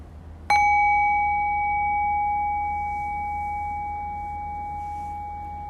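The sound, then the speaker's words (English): A single bell is struck once to open a practice session, giving a clear, bright ding whose steady ringing tone slowly fades over several seconds above a low, constant background hum. “And I'll ring the bell and I'll bring us in.”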